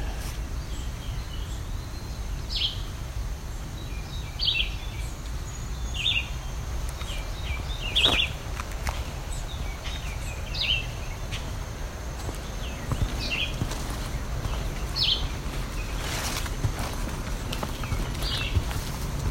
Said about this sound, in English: The red-eyed vireo. Very slow, repetitive song.